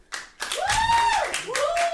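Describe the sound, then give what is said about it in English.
An audience at a live show claps steadily with dense, overlapping applause, joined by loud rising and falling whoops and cheers over the top, all starting after a brief quiet moment. “Put your hands together if you're fucking gay.”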